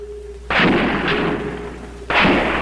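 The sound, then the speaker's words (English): Two loud gunshots, fired by the sniper Charles Whitman from the observation deck of the University of Texas Tower, ring out about a second and a half apart, each followed by a long rumbling decay, with a faint steady hum beneath and no voices. “Sirens screamed for the 90 minutes that the gun battle was in progress.”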